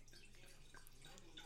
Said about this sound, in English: I'm going to just pour some wine. Here's some nice sounds for you.